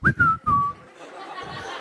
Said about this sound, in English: Take out my keys and I'm whistling.